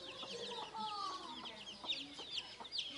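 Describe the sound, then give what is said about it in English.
A mother hen in Albania clucks in short, repeated bursts while high, thin peeping from her 12 chicks chirps constantly around her, steady, with no talking. “But that mother hen was protecting them.”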